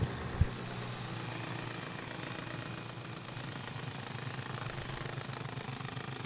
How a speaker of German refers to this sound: fangt an zu bohren.